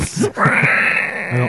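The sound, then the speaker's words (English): A voice lets out a long, high-pitched, strained squeal for over a second, imitating a bug screaming as it slides across a windshield, preceded by a couple of short vocal bursts. “The thing is just screaming. It's like actually like it's sliding across the windshield.”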